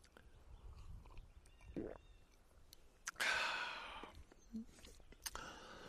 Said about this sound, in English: It is about 4 in the afternoon, and I am in Inver Huron Provincial Park, here on the shores of Lake Huron, Ontario. And I'm just about to have the first sip of my second beer.